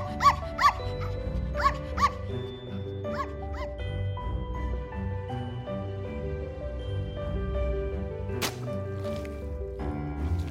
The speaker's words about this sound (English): Yet another time, a puppy.